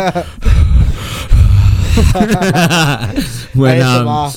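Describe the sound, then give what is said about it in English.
A voice loudly imitates the exaggerated heavy breathing of someone dozing off: two long, rasping breaths, then drawn-out exhales that turn into voiced, groaning sighs. “I catch myself I don't even know how to say it, but like I start heavy breathing. I'm the heaviest breather ever.”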